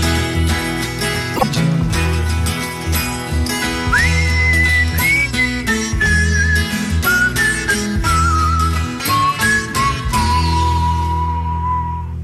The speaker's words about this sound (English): Nice whistling. Thank you. It was quite nice whistling. I'm very proud of my whistling.